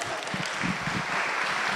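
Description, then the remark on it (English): A crowd applauds, a steady, dense wash of many hands clapping at once, holding at an even, moderately loud level throughout with no voices standing out. “Yeah, you can applaud.”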